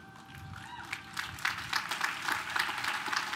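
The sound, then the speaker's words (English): An audience applauds, a dense wash of many hands clapping that builds and grows louder over a few seconds, with a faint crowd murmur underneath. “Don't clap for me. I want you to clap for yourselves.”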